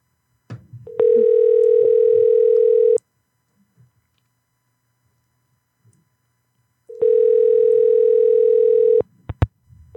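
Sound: telephone line tone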